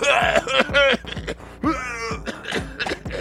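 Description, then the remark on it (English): Strained, pitched groans from several people overlap with short rough coughs, coming in uneven bursts as the air conditions worsen, with no clear speech. “The air conditions worsen as audible coughs and groans grow in prevalence.”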